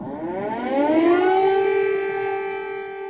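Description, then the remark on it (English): A loud air raid siren in Kyiv, sounding in 2022 as the full-scale Russian invasion was underway, rises in pitch and settles into a sustained, droning wail with a steady, slightly echoing tone and no voices. “Air raid sirens in Kyiv, signaling that the full-scale invasion of a European country in the year 2022 was well underway.”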